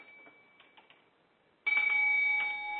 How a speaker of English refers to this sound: And wherever we are, we're going to stop, and I'm going to ring this little bell right here.